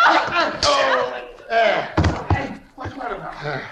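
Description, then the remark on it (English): Several heavy blows land in quick succession, thudding punches mixed with strained voices and grunts as three people knock a man unconscious in a scuffle, then the struggle fades into quieter vocal sounds. “It took three of us to knock him cold.”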